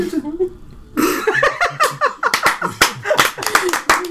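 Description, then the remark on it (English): After a second of low murmuring, a small group breaks into scattered clapping after a rough run, sharp irregular claps overlapping with voices and laughter that carry on under them until the end. “Oh, yeah, I can't believe we're applauding that.”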